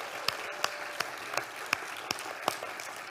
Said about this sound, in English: I think we ought to give those two ladies a round of applause and their families.